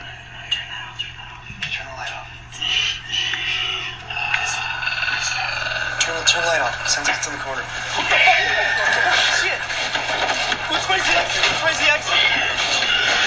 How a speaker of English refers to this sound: I want to hear an allegedly captured sound of a real Wendigo.